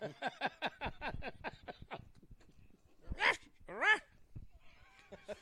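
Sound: small dog yapping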